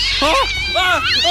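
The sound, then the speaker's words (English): Cats meow loudly in quick succession, two drawn-out wavering yowls followed by the start of a third, with no talking. “I can't control these cats. They're a huge problem.”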